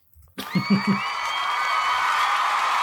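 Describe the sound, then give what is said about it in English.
A crowd bursts into loud applause and cheering after a brief quiet start, with a few low rhythmic thumps early on and whoops rising over a steady wash of clapping that continues to the end. “And keep that applause rolling for your next act.”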